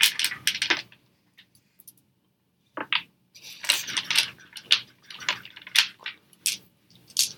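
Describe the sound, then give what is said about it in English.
Dice clatter and tumble across a hard tabletop in several bright, rattling bursts as damage dice are rolled and doubled after a natural 20 in a tabletop game, with a brief quiet pause before a longer stretch of tumbling clicks. “You double all dice that were rolled.”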